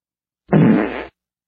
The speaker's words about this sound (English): you have to let it make bodily noises. So, fart.